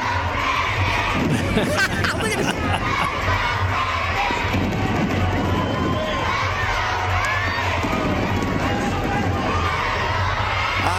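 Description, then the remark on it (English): A large crowd chants and cheers at the Adidas Wrestling Nationals, a wrestling event for kids in grades K through 12 held April 6th and 8th, a loud, steady wall of many overlapping voices and shouts that holds for about eleven seconds without a break. “That's a big crowd there, and I love it.”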